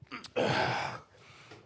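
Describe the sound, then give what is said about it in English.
A single sneeze: a quick sharp intake of breath, then a loud, explosive, hissy burst lasting about half a second, fading into softer breathy noise afterward. “I'm gonna go fucking sneeze real quick.”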